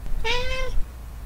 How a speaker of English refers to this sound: Well, and this guy Chris said, "I would like to hear the snippet of the episode when Boomer meows on the mic," and so here it is right now.